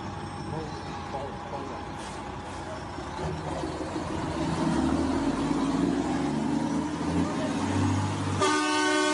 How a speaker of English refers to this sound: Here we have the truck approaching, where approximately 300 animals are stacked into this truck. 300 cows. We're gonna stop this truck so we can bear witness.